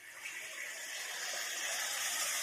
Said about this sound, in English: You can actually hear the water going into the cave. Yeah, that's he's got the hot tub in there. That's awesome.